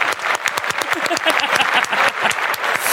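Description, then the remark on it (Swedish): Enthusiastic applause from a few people, a dense, irregular patter of sharp claps that stays loud and steady for about three seconds without letting up. “Då ska du få en riktig applåd här i podden.”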